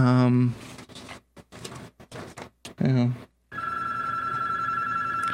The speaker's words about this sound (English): There's a phone ringing in here. I'm not going to get that because I don't know how to.